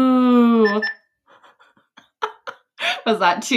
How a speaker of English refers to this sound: Was that too calm? Like, is that not the when we want to like bleep something out? Is that like not strong enough?